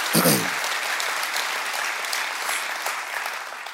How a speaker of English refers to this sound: So, oh, it's so, y'all clap. Okay, cool.